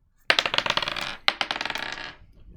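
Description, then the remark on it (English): Dice clatter across a hard table in two quick bursts, a sharp tumble of rapid clicks, then a second roll that rattles and slows to a stop. Fairly loud, no voices. “I need a new dice. These dice suck. These new dice suck.”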